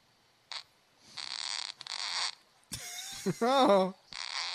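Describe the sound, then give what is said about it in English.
A few raspy, sputtering fart bursts from a woman blown close into the microphone, broken by short pauses, with a wavering voice-like squeal or laugh partway through before one last hissy burst. “Put one, make a real fart into the mic right now.”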